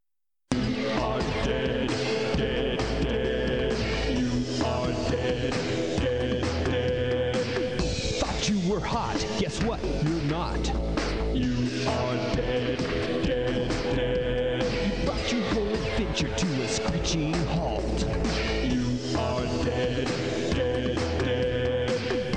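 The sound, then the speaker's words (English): A dense, loud song plays steadily for the whole stretch. It is the death song from the video game Total Distortion, played whenever the player died. A full band sound with a singing voice woven through it, with no pauses or spoken talk. “This played whenever you died.”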